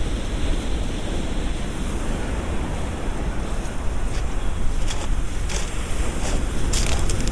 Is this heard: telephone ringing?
no